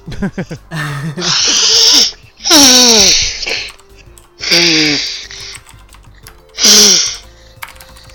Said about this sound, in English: I gotta blow my nose, right. So watch your audio spikes here.